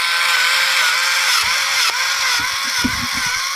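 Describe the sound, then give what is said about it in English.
A loud, steady airplane engine roar of a plane diving to attack with bombs, its engines giving out, fills the whole stretch, harsh, with rumbling low thuds breaking in during the second half. No one speaks. “Engines are giving out, no chance for these bombs.”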